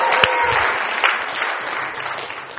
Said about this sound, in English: How about this? Jesus rose from the dead! Can you clap for that? Yeah!